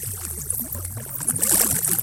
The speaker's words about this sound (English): speeding up those frequencies and converting them into sound waves. So all those whooshes and squiggles, the music of sun and earth, can be heard by you and me and everyone.